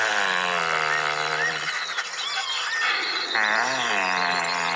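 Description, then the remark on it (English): Great bustard calls, from relatives of the crane weighing about 20 kilos: a loud, rough, buzzing drone rich in overtones, holding a steady low pitch, breaking off briefly amid thinner wavering chirps, then returning with a slight rise and dip in pitch. “These are the sounds that these birds make. The great bustards are a bigger cause for concern.”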